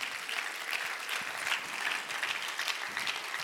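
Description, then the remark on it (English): A crowd claps hands continuously after being asked to clap once more, a dense, steady wash of many overlapping claps at a fairly even level with no voices standing out. “Can you clap your hands one more time?”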